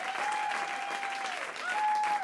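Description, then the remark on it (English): A live public radio audience at a LiveWire Radio show applauds and cheers loudly and steadily after a rap performance, dense clapping with a couple of sustained whoops or whistles rising above the crowd. “That was about as hyphy as you're going to see a public radio crowd.”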